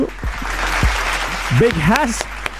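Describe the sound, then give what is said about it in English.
Steady clapping from a crowd fills the whole stretch, a dense, even patter with voices calling out and cheering over it partway through. “Big round of applause to you, my brother.”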